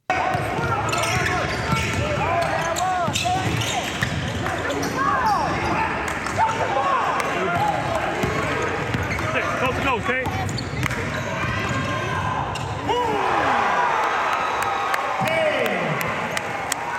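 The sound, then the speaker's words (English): A basketball is dribbled from half court on a hard gym floor and dunked, amid a loud, busy crowd of shouting and cheering voices, with sneaker squeaks, a woman screaming and a surge of excited cheers building near the end. “I started dribbling, and I saw open lane, and I took like three dribbles from half court, and I just dunked on somebody.”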